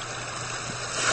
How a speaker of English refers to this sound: I got this new CD of sounds, and I don't really know all the sounds on it. It's just like sound effect CD. And it's recordings of different places, like, you know, Africa on an afternoon. I suppose this one is the ocean.